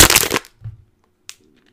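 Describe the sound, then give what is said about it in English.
A plastic water bottle is crushed to symbolize closing a vault: a loud, crackling burst lasting about half a second, then a soft dull thump, a single sharp crack and a few faint ticks. No voices. “I have this here water bottle.”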